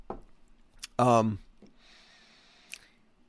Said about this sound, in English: I got to take a sip of water.